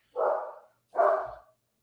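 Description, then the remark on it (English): A German Shepherd of about 70 pounds barks twice, two loud, full-bodied woofs separated by a short pause, with no voices around them. “What's up with your dog?”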